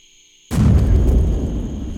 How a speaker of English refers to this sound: What was that? What was what, ma'am? Are you telling me you didn't hear... I mean, wasn't that an explosion? Is that normal around here?